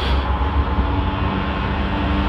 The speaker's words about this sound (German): Ja, es ist jetzt gerade ein Zug angekommen.